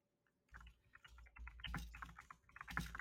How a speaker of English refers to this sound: Wow, we can hear you typing. I know. It's immersive, isn't it? Isn't it a little ASMR? Diabolical. It's a very nice sounding keyboard. I'm gonna be honest. It really sounds like super nice.